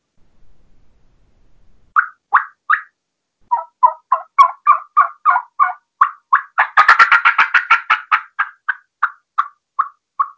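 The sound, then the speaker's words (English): A hen turkey fly-down cackle played on a mouth call, signifying a hen flying down: loud, sharp yelping notes that start uneven, rush into a fast excited burst, then slow and taper off, with no talking. “I'm going to give a fly down cackle, which is basically signifying that the hen flew down”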